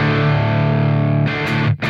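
A heavily distorted electric guitar played through a fuzz pedal, its bias knob turned down, sustains a thick, buzzing chord, then shifts abruptly near the end with a brief gritty burst and a short dropout before ringing again.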